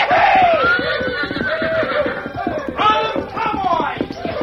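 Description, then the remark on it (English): A big bronco horse, trembling with fear and excitement and held by cowboys as a rider gets into the saddle, whinnies in several loud, quavering bursts over steady thudding and scuffling, with a crowd's shouting mixed in. “the cowboys held the big horse that trembled with fear and excitement.”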